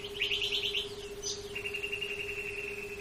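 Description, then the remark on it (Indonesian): A songbird sings from a distance, opening with a quick run of bright trilled notes, then holding a thin, steady high whistle, faint against a soft background hum. “Dari kejauhan, ia mendengar suara nyanyian yang lain.”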